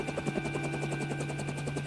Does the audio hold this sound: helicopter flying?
yes